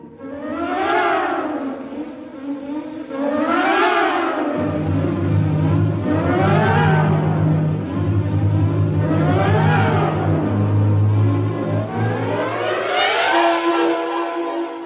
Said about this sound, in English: Somehow the engine coughed and spit us back to the station.